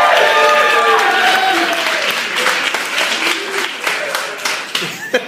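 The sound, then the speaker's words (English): Loud audience applause at a live comedy show at Wise Guys in Utah during the Leonard Maltin game, with dense, rapid clapping and crowd cheering, opening with a high, wavering scream-like voice that slides downward before the clapping gradually thins out. “It really sounded like someone was slowly murdered to me during that applause.”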